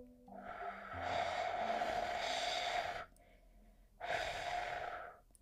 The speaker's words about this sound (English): Today, I switched it up. And I'm drinking lemon ginger tea, so we're gonna fade out the music and take a sip together. Let's do it. As always, you gotta blow it because at least my tea is piping hot, so we're gonna blow.